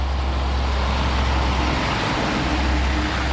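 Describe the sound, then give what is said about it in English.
Heavy coal trucks, gray-stained rigs known as coal buckets, rumble steadily up a narrow country road in Inez, Kentucky, on a crisp day, hauling coal from the Martin County Coal Company; the deep engine drone and broad road noise hold constant and fairly loud throughout, with no voices. “Trucks hauling coal, gray-stained rigs known as coal buckets, wend their way up a narrow country road in regular intervals.”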